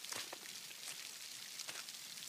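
Steady rain falls and patters on a surface, a dense hiss with scattered sharper drops tapping, continuous and moderately loud with no voices.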